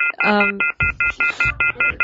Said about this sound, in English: We had a busy signal there for a while. We thought we had the wrong number or something.